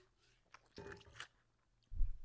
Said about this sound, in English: we got a cool ice maker in the new house. And it has the greatest ice. It's called, is it popcorn ice? Will you pull up popcorn ice? That's the little ones, right? The little tiny cubes. I'll show you. You kind of chew up.